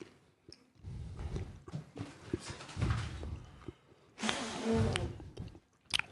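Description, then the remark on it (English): Someone bites into and chews chocolate pudding, with irregular wet, squishy mouth sounds and smacks, swelling into a louder, noisier stretch of chewing before trailing off. “I got chocolate pudding. Oh my god. Awful stuff. Oh my god, that's the worst one. I bit into it, and I immediately felt that shit in the back of your throat that you gotta throw up.”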